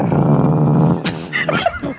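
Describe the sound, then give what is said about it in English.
At an auto show, a voice imitates the engine of a 1938 Alfa Romeo: a low, loud, pulsing growl held for about a second, then a few shorter rough vocal bursts and pitch slides. “What sound do you think this car made when it used to drive down the road?”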